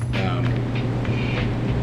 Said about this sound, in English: The air conditioning just kicked on.